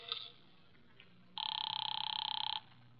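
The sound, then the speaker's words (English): A single burst of telephone ringing, a bright trilling electronic ring lasting about a second, fairly loud, preceded by a few faint clicks. No one speaks. “Here's where the phone is.”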